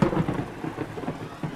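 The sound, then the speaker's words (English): Heavy rain pours in a steady, dense hiss while low, rolling thunder rumbles underneath, swelling briefly near the start and again toward the end. “The rain continued to fall, and the flood continued to rise, consuming the wreckage the Nephilim had left behind.”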